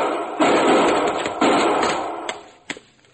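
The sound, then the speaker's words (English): Gunshots fired from a car a little way down the street: two loud, booming blasts about a second apart, each trailing off, followed by two sharper, quieter cracks. No voices. “The shots came from a car a little way down the street, and they caught Deeming in the chest and arm before he had a chance to fire at me.”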